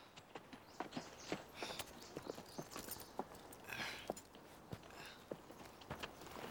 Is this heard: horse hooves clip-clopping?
yes